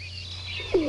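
A single soft, low pigeon coo rises and falls near the end, set against a steady background hum and faint high-pitched twittering, with no one speaking.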